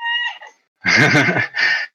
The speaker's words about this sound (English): my cat. I heard Mishka down there.